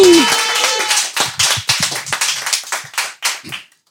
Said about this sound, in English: Let's give a big round of applause to our next comedian